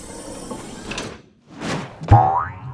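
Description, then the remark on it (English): A springy cartoon boing rings out as Captain Blue bounces super high on the dwarf planet Pluto, a sharp twangy bounce with a rising, wobbling pitch, loud after a couple of softer whooshing swells, with no talking. “she bounced up super high.”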